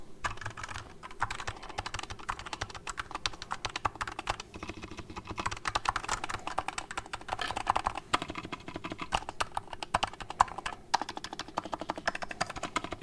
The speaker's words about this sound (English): Listen to that spacebar. How clean is that? So clean. Go hit your spacebars at home, guys. No way they sound this good. Best sounding keyboard in the business. Can't do better. Can't. Love it.